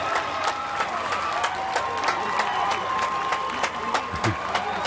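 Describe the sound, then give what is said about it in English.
A large outdoor crowd at the Newport Folk Festival applauds and cheers continuously, with scattered sharp claps and whistles rising over a steady wash of noise, calling for the band on stage to play an encore. “If it's up to the crowd, we are, right? The crowd very here much into.”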